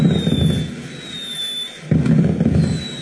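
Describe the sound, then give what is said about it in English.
A fireworks sound effect plays: fireworks go off in a dense, rumbling barrage with thin whistling streaks overhead; the crackling booms ease briefly, then surge back loudly for a second volley. “Do I have an explosion on here? Nope, I got some fireworks.”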